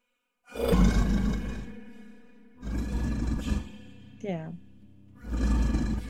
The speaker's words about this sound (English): now you're here, listening to this beast howl in the dark.